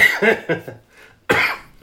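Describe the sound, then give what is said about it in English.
A harsh fit of coughing: three or four quick hacking coughs in a row, a brief pause, then one more loud, breathy cough. “I apologize for the coughs.”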